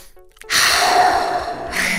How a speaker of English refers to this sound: Yeah, start by getting them to calm down and use the Swiss Army knife in the mental health toolbox, deep belly breathing.